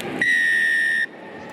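A referee's whistle starts a rugby match between the Highlanders and Moana Pacifica with one long, shrill, steady, loud blast lasting nearly a second, over a low murmur of stadium crowd noise that continues after it stops.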